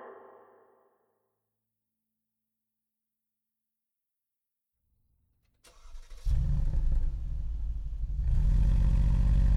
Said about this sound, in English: His foot mashed the gas pedal. The car shot forward like a rocket. It hugged the curves of the Pacific Coast Highway as the odometer buried in the red.